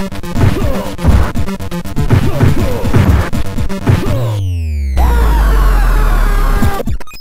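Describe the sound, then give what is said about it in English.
A retro video game scream sound effect from the NES game American Gladiators, heard in the jousting event when a player gets knocked off: a burst of clattering, crashing game noise, a quick falling tone, then a long, loud, buzzy synthesized scream held for about two seconds. “That's a great scream there.”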